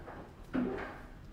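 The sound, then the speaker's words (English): Ice suddenly tumbles down inside an ice machine in an apartment, a soft, abrupt clattering rush that lasts about half a second before fading, with no voices. “The ice from the ice machine, it just started doing things and it just scared the crap out of me.”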